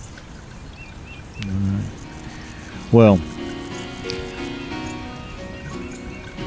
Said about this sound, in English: the shadows grow long throughout the afternoon as you follow the babbling creek.